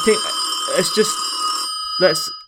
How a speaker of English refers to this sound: I think my phone's ringing. One second.